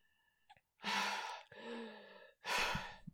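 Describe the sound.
A person gasps for air after swimming up to the water's surface, in three loud, breathy, ragged pulls, with brief pauses between each heaving breath and no talking.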